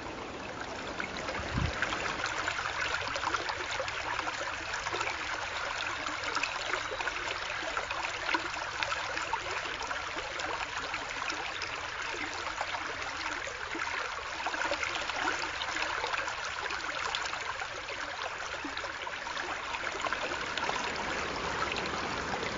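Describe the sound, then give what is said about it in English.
A noisy brook rushes and babbles steadily throughout, a dense, continuous wash of flowing water with no voices, its churning texture holding constant from start to finish, heard at night during a walk past a spot overlooking the river. “You might be able to hear this, a really noisy brook.”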